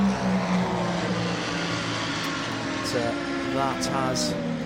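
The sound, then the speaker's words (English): Race cars run three wide round the banking of a track toward the Le Mans chicane. Engines drone steadily in a dense wash of motor noise, with rising whines as cars speed past, continuous and fairly loud throughout. “Three wide again, going round the banking, this time down in towards the Le Mans chicane.”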